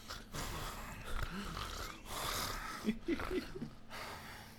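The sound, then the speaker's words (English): A voice imitates heavy, wheezy breathing: several rasping, noisy breaths in a steady rhythm, fairly loud, with a few snorting catches near the end. “But it couldn't have been because we didn't hear him breathing like this.”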